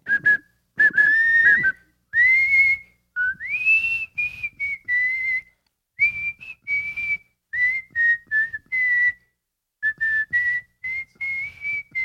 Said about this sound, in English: Give me one more whistle, whatever you want.